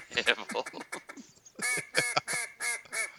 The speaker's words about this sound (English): Oh, who the hell has that? Oh, good lord. It's the duck call, bro. Come on. Why do you have that? I'm trying to bring this shit back.